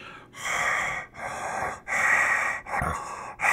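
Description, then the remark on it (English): A voice imitates rough, ragged breathing: four long, harsh breaths in a steady rhythm, each separated by a brief pause, fairly loud with no talking. “So you enter back into the hallway, continuing down the hallway about 5 feet, and you hear the same rough, ragged breathing coming from the east end.”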